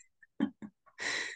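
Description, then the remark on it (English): Someone gargles a mouthful of rum and coke: a couple of short wet gulps, then a harsh, bubbling gargle lasting a moment before stopping. “She's gargling. Wow. Gargling rum and coke.”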